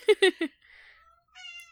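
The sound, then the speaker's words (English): Sparta, a male pet cat, meows mournfully: three loud, short, rising cries in quick succession, then a quieter pause and a thin, higher, drawn-out wail at the end. No one speaks. “Doesn't he sound mournful? He does. He does. He's been fed like 3 hours ago.”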